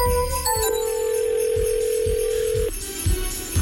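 A phone line rings out as a call begins: a few short electronic tones, then one long steady ringing tone lasting about two seconds, over a faint rhythmic thumping.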